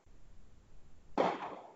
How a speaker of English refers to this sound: Yeah. They're shooting fireworks off. Yeah, fireworks.